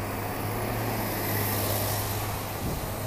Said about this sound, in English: And a bus just dumped out some fumes. But those diesel engines on those buses are all over the world. And they get people from A to B, and we just keep moving.